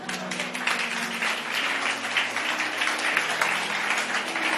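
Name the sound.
audience clapping hands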